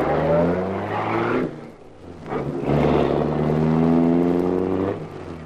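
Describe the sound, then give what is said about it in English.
A bus engine revs hard and loud, its pitch climbing in two surges with a brief dip between, as the driver floors the accelerator and the bus roars off at high speed through unlocked gates. “I shoved my foot down on the accelerator, and we got out of the place quicker than a fish slides down a performing seal's gullet.”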